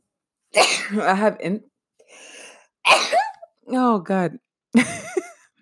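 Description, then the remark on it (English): A person sneezes with loud voiced gasps and breathy bursts, several vocal spasms spread over a few seconds, followed by a quieter breath and another sharp burst. “oh, I'm about to sneeze.”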